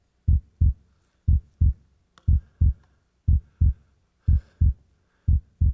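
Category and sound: sound effect, heartbeat sound effect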